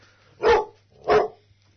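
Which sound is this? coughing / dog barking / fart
dog barking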